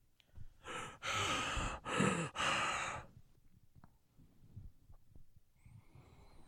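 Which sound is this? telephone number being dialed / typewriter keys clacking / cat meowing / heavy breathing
heavy breathing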